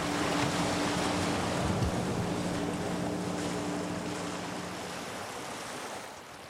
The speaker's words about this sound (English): The weather conditions have got worse. The day is grey and wet, and the waves are coming fast and strong.